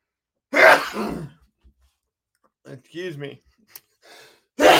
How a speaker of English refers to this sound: Excuse me. I hope that don't become the thumbnail. Me sneezing my head off.